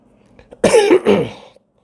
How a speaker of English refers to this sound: I'm a little under the weather, so don't mind the cough.